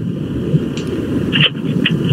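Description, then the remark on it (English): Steady low rumble of road noise inside a car driving to a doctor's appointment, a continuous droning hum with a few faint higher clicks and no one talking. “I do have Megan is in next to me in the car as well. We're headed to a doctor's appointment.”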